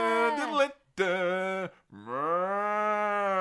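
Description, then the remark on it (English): Three loud cow moos in quick succession: a wavering first call, a shorter second, then a long, steady drawn-out moo. No talking. “More cows in wrestling.”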